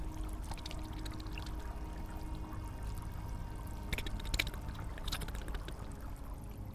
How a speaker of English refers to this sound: Remember, this is the pounding of the water. You manage to tune that out and you hear